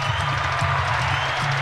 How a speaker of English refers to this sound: Let's clap it up.